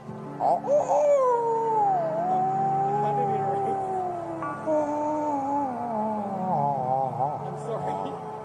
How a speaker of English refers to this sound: It's time for whale noise. What's that, Flipper?